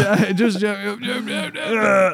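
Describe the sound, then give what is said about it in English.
A man stretching and flexing lets out a long, drawn-out yawning groan, loud, its pitch wavering and dipping briefly before stretching on again, with no words. “He's stretching. Yawn, flex, all the rest.”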